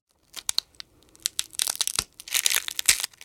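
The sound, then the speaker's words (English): A foley dinosaur egg hatching, like the Jurassic Park hatching scene, made with an ice cream cone as the prop: a string of sharp, bright crunches and crackles that start sparse, then build into dense, brittle crinkling like shell or foil breaking apart, with no voices. “If I was to guess, to my ears, I would probably say like aluminum foil being hit with like a pin.”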